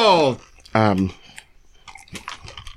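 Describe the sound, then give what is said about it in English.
Two short voiced sounds give way to crunchy chewing: irregular crackly bites and clicks of a spicy food with a hard outside that tastes like stale bread being worked over in the mouth. “I'm like keep chewing.”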